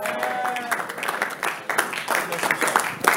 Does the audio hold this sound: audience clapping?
yes